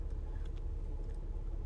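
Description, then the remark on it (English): A steady, deep engine rumble fills the cabin of a moving car, low and continuous throughout, with faint higher rattles and road noise over the top and no voices. “I'm in my car and I see this idiot just making U-turns back to back.”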